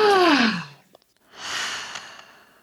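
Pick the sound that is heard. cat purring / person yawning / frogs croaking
person yawning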